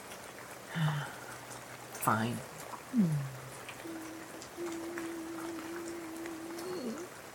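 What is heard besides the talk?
falling water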